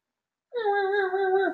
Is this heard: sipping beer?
no